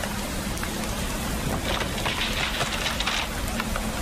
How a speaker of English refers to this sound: The rain is just bucketing down on you.